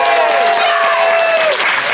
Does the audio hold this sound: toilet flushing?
no